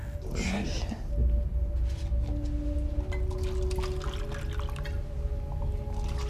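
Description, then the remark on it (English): Vodka pours steadily into a glass for several seconds, served straight up with no ice, no water and no chaser: a continuous gurgling stream over a low, steady background hum. “Straight up. No ice, no water, no chaser.”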